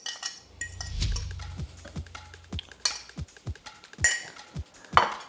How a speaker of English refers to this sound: So now I'm gonna add my chicken to the sauce.